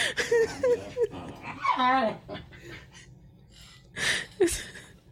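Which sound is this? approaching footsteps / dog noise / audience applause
dog noise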